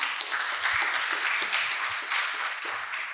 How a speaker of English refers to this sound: Why don't we give him a round of applause for that?